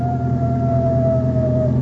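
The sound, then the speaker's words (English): Coyotes howling: one long, steady wail that sags slightly in pitch, held for nearly two seconds over a constant low rumble, with no voices. “What's that? Coyotes.”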